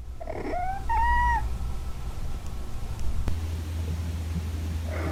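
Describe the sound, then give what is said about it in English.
A cat in heat lets out a couple of drawn-out, rising yowls in quick succession near the start, then falls quiet over a steady low background rumble. “It's another cat and heat video. Oh, my God, that cat's getting attacked by another cat.”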